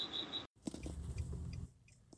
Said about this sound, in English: First of all, I am in the car again. I think I do my best call ins on the road. So bear with me and ignore some of the strange road sounds.